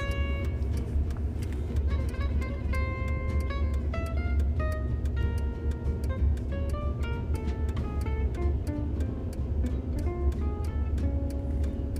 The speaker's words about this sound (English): We have traffic in Oxford today. I guess I'm doing the traffic report. There's four cars instead of the normal one. So look out, people in Oxford. There may be a traffic jam with your one light town.